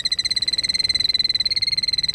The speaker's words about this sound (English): The killdeer, today's featured feathered friend, here on Talkin' Birds.